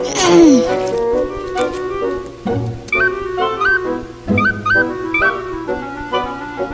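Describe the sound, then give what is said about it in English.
Three baby birds whose nest is broken call out in distress, a series of high, wavering cries and short repeated chirps that overlap and come in loud, uneven bursts, with no talking. “It's a baby bird. Or two. Or three. They sound upset.”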